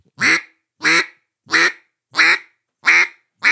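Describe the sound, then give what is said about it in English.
A duck call blown into a mallard hen quack, six loud, evenly paced quacks about half a second apart, each a short nasal burst with clear gaps between and no talking. “It's so if you're doing a cluck, not a cluck, that's a goose calling, but a quack.”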